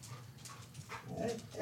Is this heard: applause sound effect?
no